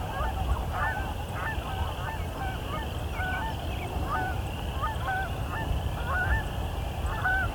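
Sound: canada geese honking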